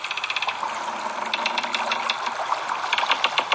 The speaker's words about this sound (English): Okay, that's a boat swaying in the water. That would irritate me.